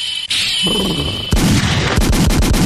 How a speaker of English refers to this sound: You need a good gunshot.